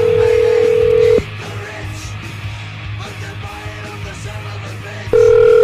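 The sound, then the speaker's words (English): A loud, steady telephone tone sounds, breaks off into a stretch of faint line noise and muffled background, then another steady tone resumes near the end, as a radio show dials and connects a call to Sara Jay. “All right, let's get her on the phone.”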